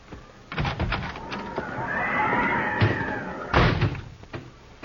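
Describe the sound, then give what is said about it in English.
A horse lets out a long, quavering whinny that rises and falls over a couple of seconds, amid several sharp thumps and bangs like a door or hooves. “Alvy's a good boy. He'll put your horse up.”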